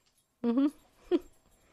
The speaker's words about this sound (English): My dog's bugging me. Yeah, he is.